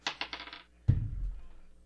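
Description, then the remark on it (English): Dice are re-rolled to decide whose turn it is: they rattle in a quick series of sharp clicks, then drop onto a surface with a single hard thud and a short rumbling tumble. The sound is clear, with no voices. “Let's roll again. Let's see what the dice say.”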